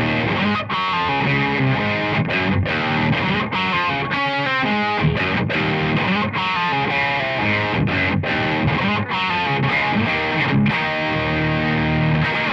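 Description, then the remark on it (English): A heavily distorted electric guitar riff churns out a gritty, repeating pattern with punchy accents and sharp gaps, backed by steady drums, loud and continuous with no voices. “Okay, I just love that riff. I could just jam that out over and over.”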